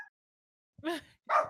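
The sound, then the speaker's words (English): A dog barks twice in quick succession, two sharp, fairly loud barks after a brief silence, with no one talking. “I'm sorry, my dog.”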